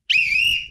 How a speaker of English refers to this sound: People get really annoyed by that. So I apologize. I'll try to keep the whistle down to a minimum.